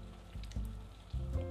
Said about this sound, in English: So it started to rain, which is not cool.